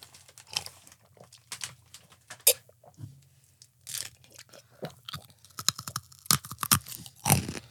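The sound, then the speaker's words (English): Chewing of a grape Hi-Chew candy: irregular wet, crunchy clicks and smacks in bursts for several seconds, with no talking. “I'm going to try a grape Hi-Chew.”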